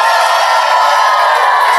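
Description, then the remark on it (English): A large live crowd aboard the Jericho Cruise roars with sustained cheering and whooping, a dense wall of voices that stays loud and steady throughout with no pauses. “Enormous crowd against much. It's much bigger now that we actually have professionals on the stage with us.”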